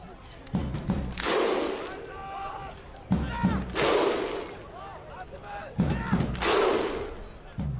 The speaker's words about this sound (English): The thunder clap? Oh, yeah. The Viking clap?